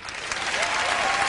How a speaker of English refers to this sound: Ladies, if your mama taught you, clap.